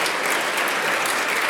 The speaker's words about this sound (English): Do you mind if we give Jesus a clap offering? Just clap it. Just clap.